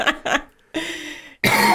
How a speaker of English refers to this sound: Excuse me. Yeah. Stop We've all been fighting coughs in our house. You're doing well right now. You're not coughing.